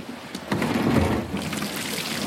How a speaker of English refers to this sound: are pulling in trays of wild catch Sydney rock oysters, hauling them over the side of the boat one by one.